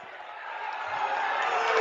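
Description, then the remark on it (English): A high school basketball crowd, half cheering and half booing a foul called on a rebound with a minute 28 to go, blends into a dense, steady roar that swells slightly louder over two seconds, with no distinct voices standing out. “Half the side is cheering. The other half is booing.”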